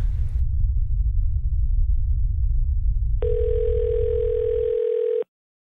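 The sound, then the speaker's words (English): A steady electronic phone alert tone sounds for about two seconds over a low, continuous rumbling drone, then both cut off abruptly. It is the phone of a USGS on-call earthquake team member getting a text message or call from a duty seismologist. No one speaks. “whenever our phones go off with either text messages or a phone call from one of the duty seismologists”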